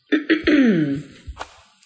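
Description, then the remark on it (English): Someone clears their throat: three quick rough bursts run into a drawn-out, voiced rasp, then a couple of softer little catches as it trails off. “Am I going to stop clearing my throat at any point during this episode, or if I'm going to make y'all suffer through that with me?”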